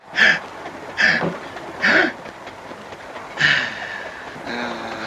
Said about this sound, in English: I stand in the rain and he sneezes. Although it seems to be very clear if you listen, that's actually Zeppo sneezing and it was dubbed in later.